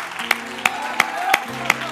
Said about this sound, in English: And let's clap our hand to the Lord one more time, because he is certainly deserving of all of our praise.